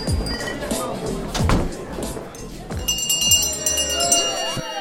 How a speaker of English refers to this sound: And that's the last call bell for week two of Sips with the Tips.